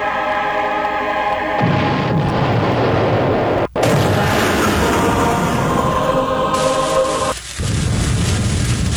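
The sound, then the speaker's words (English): A string of loud, booming cartoon-style bomb explosions, one after another with rumbling low end and harsh crackling bursts, separated by brief abrupt cuts. “They're not great firework noises. No, that's cartoon bomb noises.”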